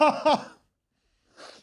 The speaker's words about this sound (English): Great sneeze.